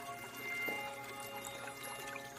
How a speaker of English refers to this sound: There are lots of lush green plants and a beautiful 6-foot rose quartz fountain bubbling in a corner.